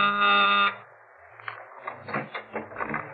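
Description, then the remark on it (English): A loud, harsh electric door buzzer sounds once for under a second, then cuts off, followed by soft muffled movement and faint voices; a kid delivering a package is at the door. “I was calling her and tell me how she made out with Mona Taylor's mother when my door buzzer phoned.”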